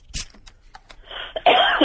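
A sharp, close cough bursts out, followed by a few smaller throaty catches, then a steady loud hiss like an aerosol spray takes over for the rest.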